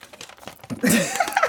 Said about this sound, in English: Okay, come on, paper rustling.